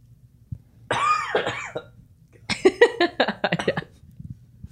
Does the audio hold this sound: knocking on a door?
no